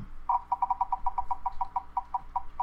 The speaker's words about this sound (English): Turn up the volume so you can hear the little wheel beeps and boops.